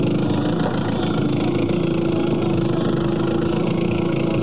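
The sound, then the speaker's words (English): The engine of a 57-foot fiberglass motorboat, started on a cold morning, runs at a steady, loud idle, a continuous droning rumble with a constant pitch and no voices over it. “I can still remember my first boat. Trying to get it started on a cold morning.”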